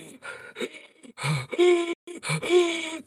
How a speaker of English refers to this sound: Then detail starts to glow from it, such as a silk curtain bed with the shadow of a person resting inside of it. We hear pain gasps for air resonate inside of that bed.